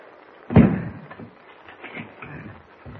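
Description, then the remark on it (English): The heavy door of a shack in the woods slams shut with a booming thud, followed by several quieter clicks and rattles as a bolt is worked into place. No one speaks. “Bolt the door, Chuck.”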